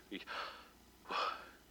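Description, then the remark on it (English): A voice softly breathes the divine name YHWH pronounced without vowels, as two airy, unvoiced syllables, one drawn in like an inhale and one pushed out like an exhale, separated by a brief pause. “And when pronounced without the intervening vowels, it actually kind of sounds like breathing.”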